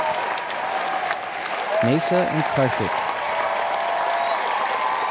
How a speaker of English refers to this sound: Big rousing round of applause for the final two competitors.